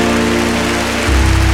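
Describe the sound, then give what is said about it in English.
An audience applauding, dense and steady clapping that blurs into a continuous roar, with a low sustained musical drone underneath that shifts pitch about a second in. “But listen, furthermore, clap your hands and shout unto God with the voice of triumph.”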